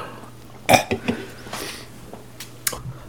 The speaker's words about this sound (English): Oh, there's a bit of vomit in that burp then.